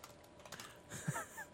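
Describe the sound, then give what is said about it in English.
A short burst of keyboard typing, several quick soft clicks, with a faint breathy sound partway through and no clear speech. “They heard me just laughing and typing to you, like telling you that the link still works.”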